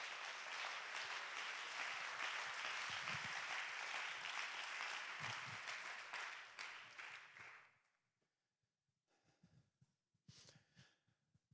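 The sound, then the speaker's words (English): A crowd claps their hands together in praise in a loud, dense burst of applause lasting several seconds, then fades out into near silence with a few faint scattered sounds afterward. “One more time, let's clap our hands and give him praise.”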